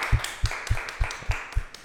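Steady rhythmic clapping, about six even claps in under two seconds, each landing with a deep thump like a beat, over a constant hiss. No voices.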